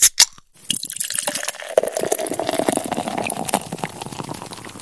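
A couple of sharp clicks, then a new beer pours steadily into a glass, a continuous bubbling, trickling fill that keeps going for several seconds with no one speaking.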